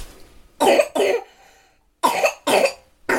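A small child coughs harshly in two pairs of rough, barking bursts with a short pause between them, close and loud with no talking.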